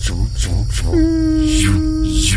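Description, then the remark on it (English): A steady electronic hum holds one low pitch with a fainter higher overtone, framed by whooshing sweeps at the start and end over a constant low rumble: the sound effect of a moving laser wall, like a buzzing laser barrier in a game. “Oh, this is the laser wall.”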